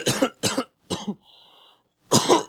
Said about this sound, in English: Shit. I wasn't ready. I was still coughing from that hit I took.